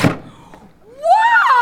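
A paper cutter chops down with one sharp, heavy thunk, used to fake chopping sounds to scare tourists. After a short lull, a rising, whining tonal squeal follows and holds to the end.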